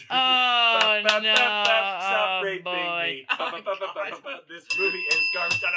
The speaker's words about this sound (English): Once we start singing …, we gotta get the bell to intervene.